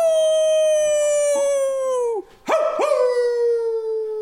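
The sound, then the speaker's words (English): A person imitates a wolf howl: a loud, drawn-out wail that slowly sinks in pitch, breaks off briefly, then swoops back up and holds again, with no talking alongside. “I had that in my notes. It says howl.”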